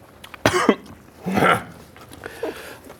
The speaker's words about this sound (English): Don't cough. The coughing's the worst part.